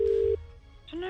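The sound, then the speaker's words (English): A steady electronic telephone ringing tone as a call is placed hums for about a third of a second, cuts off, and after a short pause a voice answers and starts speaking over the line. “All right, well, so we ring them up and see if they'll put us...”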